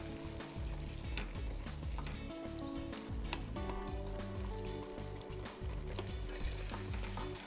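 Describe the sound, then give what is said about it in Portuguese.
A pan of stew with freshly added carrots sizzles and bubbles steadily while a spoon stirs it lightly, with soft scraping clicks recurring through the continuous cooking noise; no one speaks. “Misture levemente e deixe cozinhar um pouco.”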